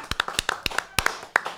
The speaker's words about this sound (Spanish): Y estamos, tú sabes que estamos en la República Dominicana ahora en vivo. Sí. De costa a costa, a través de Canal América. Un aplauso para Canal América.